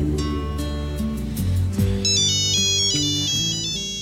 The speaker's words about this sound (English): But then, of course, the phone rings.